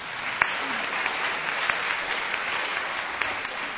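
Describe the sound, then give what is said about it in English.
An audience at an evening talk at LSE applauds its speakers, a dense, sustained wash of applause with scattered sharper claps standing out, with no voices on top. “I tell you what, let's give our speakers a warm round of applause, and then we'll begin.”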